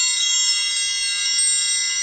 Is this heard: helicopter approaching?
no